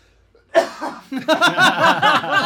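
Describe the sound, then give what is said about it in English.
A loud coughing fit: one harsh burst, a brief pause, then a rapid string of rough, throaty coughs that keep going without letting up. No one speaks. “Is there a place I could probably go to, like, cough for a second and not disturb anyone in training?”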